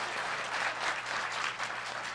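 A crowd applauds, a dense, steady wash of many hands clapping that holds at an even, moderate level for about two seconds, with no voices.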